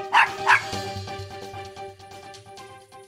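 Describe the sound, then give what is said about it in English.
A dog named Thor, playing Frisbee, gives two quick, sharp barks, followed by a few seconds of quieter background sound with faint whining. “playing Frisbee with his dog”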